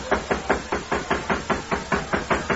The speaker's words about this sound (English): Uncle Homer swaggered up to the door of the Modoc City jail and knocked.